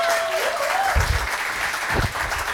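An audience applauds steadily, a dense wash of many hands clapping at an even loudness throughout, with a faint tonal whine briefly audible at the start.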